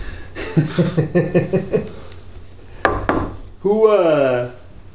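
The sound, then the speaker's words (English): A quick run of about six hollow knocks on wood, done so as not to jinx something, in steady rhythm, followed by a single sharper thump and then a short, gliding vocal sound from a voice. “Knock on wood.”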